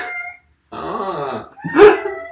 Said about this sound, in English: It's the saddest cat noise of all time.